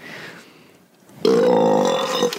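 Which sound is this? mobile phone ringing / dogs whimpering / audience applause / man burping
man burping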